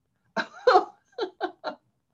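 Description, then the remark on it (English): A short run of five coughs with no talking, caused by dust irritating the throat: two heavier, rougher hacks first, then three lighter, evenly spaced coughs. “Ask me that question one more time and let me cough.”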